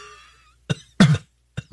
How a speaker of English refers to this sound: There's nothing funny about the cough I've had for a few weeks now.